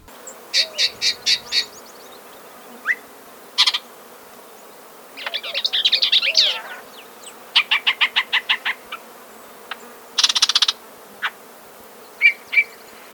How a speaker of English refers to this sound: So if you're out walking in a brushy area near the river in Grand County, and you're hearing strange sounds coming from the bushes, it's quite possible it's a yellow-breasted chat.